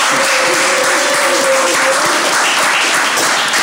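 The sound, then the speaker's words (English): A crowd applauds and cheers for Larry Hoover, dense, loud clapping holding steady for several seconds, with a sustained high whistle or shout riding over it during the first half. “Let's make some noise for Larry Hoover.”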